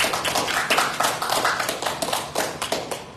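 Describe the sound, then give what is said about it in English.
An audience in a church sanctuary claps together during a service, a dense, steady wash of overlapping hand claps, loud and sustained for a few seconds with bright crackling bursts and no one speaking. “Give him another hand clap and hand for this one.”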